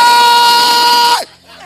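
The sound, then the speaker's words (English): A person praying lets out a single loud, sustained shout, held steady for over a second before its pitch drops sharply and it cuts off, leaving a quieter background. “Sometimes I'm dead and I'll be screaming.”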